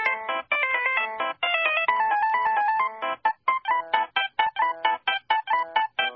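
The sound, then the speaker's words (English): A bright, tinny classical melody plays as a phone ringtone, with quick staccato notes and a bouncy rhythm that becomes choppier and more detached toward the end, heard alone with no voices. “Coming in at number three, Rondo a la Turca by Mozart.”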